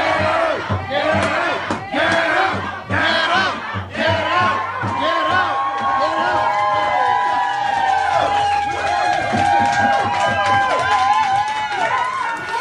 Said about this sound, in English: At Corduroy Restaurant, this was the crowd reacting to health inspectors arriving.